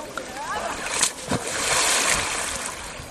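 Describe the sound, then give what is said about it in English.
Water splashes and streams off a heavy object being lifted out of the water, with a couple of sharper sloshes early on and a steady rush of dripping water, while voices call out in the background. “Well, the thing is, like, most of it was lifting it out of water.”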